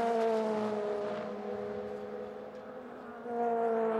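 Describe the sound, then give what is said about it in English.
Race car engines on a track as the checkered flag comes out, with Dennis Anderson's car coming to turn four followed by the number 35 car of Francois Herault, hold a loud, buzzing high-revving drone that drifts slightly lower, eases off briefly, then swells back up near the end. No one speaks. “Dennis Anderson coming to turn four. And he's got the number 35 behind him, of Francois Herault in the TDS.”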